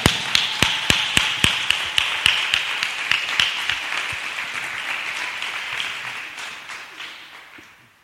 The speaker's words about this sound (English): Don't just clap for my message, yo. Receive it.